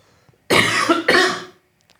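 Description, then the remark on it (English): A person coughs twice in quick succession, two loud, harsh bursts back to back, with quiet before and after. “But before we do, I'm going to cough.”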